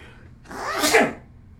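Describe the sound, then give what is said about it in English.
A single loud sneeze bursts out with a sharp breathy explosion across the whole range, then fades quickly into quiet background noise. “I'm going to sneeze.”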